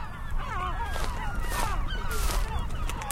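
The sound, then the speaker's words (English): A crowd of great black-backed and herring gulls calls continuously at a dense brown pelican nesting colony, their harsh, overlapping squawks and wails layered over a steady low rumble of wind or surf, with no one speaking. “You're hearing great blackback gulls and herring gulls.”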